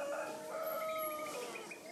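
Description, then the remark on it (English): A rooster crows in a long, drawn-out call from across the river in a very small village, over a busy outdoor background of other birds and ambient noise. “We're in a very, very small village where you just hear roosters calling to each other from across the river, and music that people are listening to, and lots of birds, the occasional scooter.”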